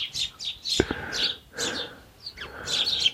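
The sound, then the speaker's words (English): Several small garden birds chirp and tweet in quick, overlapping bursts at a feeder, with a couple of brief soft knocks or flutters in between, no voices. “They're not too shy. They're being a bit careful, and I mean they're shyer than the robins are.”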